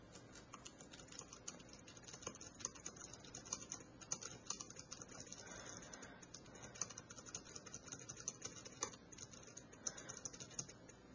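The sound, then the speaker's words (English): Soft, quick key clicks of typing into the word processor on the quiet keyboard of a Refreshabraille 18 braille display, a steady irregular patter of light taps with no talking. “Now, I can type on the Refresh Your Braille 18's keyboard.”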